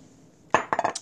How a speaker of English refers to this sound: Excuse me one second. Let me get a little sip.